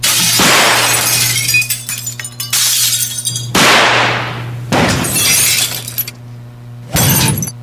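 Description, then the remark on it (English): Repeated loud crashes of glass shattering, about five bursts of breaking and tinkling shards spread across several seconds, harsh, with a steady low hum underneath and no one talking. “We got a glass problem in here now.”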